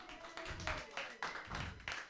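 An audience at a comedy show claps for a comedian in a dense wash of hand claps, swelling in regular surges about three times a second, steady and moderately loud for the whole stretch.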